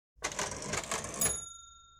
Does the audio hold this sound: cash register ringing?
yes